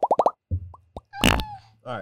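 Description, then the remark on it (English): A bubbly fart sound effect played from a pressed fart button: a quick burst of four popping puffs, then a low rumbling buzz with short blips, a loud sputtering blast in the middle, and a final wet squelch. “No more fart button. That was a little weird.”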